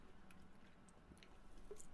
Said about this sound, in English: I'm taking a sip of my beverage. I will give you a hint. It's carbonated. What's the first thing that comes to your mind? That's right. It's a can of Coke. So I got a can of Coke here.